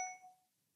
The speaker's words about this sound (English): Chime? Something's just chimed. Was it your emails?